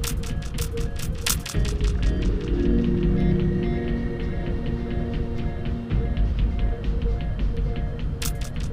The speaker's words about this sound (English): And I just, that pause was because I just heard the most audible footsteps in the hallway. Someone left for work, I guess.